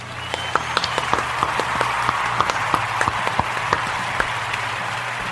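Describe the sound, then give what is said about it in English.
A steady round of applause from a small group, sharp overlapping claps rising and fading over a few seconds, moderately loud with no voices. “Well, yeah, big round of applause to all of those guys, too.”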